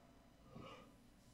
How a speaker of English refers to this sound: See, another yawn. Yeah, I'm sorry.